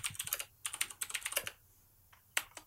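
Quick clicking keystrokes on a computer keyboard come in two rapid bursts, then a short pause and a few scattered taps. The typing is fairly quiet, with no voices.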